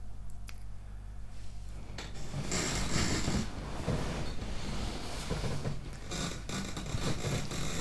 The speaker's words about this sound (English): Oh, so creaky. I need to sort this chair out. Maybe I need to get a new chair.